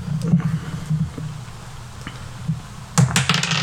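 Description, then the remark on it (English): Dice thrown overhand hard onto a table for a dexterity saving throw in a tabletop game, a quick flurry of sharp clattering clicks near the end after a few scattered taps, fairly loud over a low background hum. “What was that? Did you just overhand to roll dice?”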